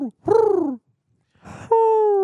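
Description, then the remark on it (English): A person imitates an owl with a loud, wavering, falling hoot, then a breathy rush of air and a long, steady hoo that runs to the end. “What about an owl? You go.”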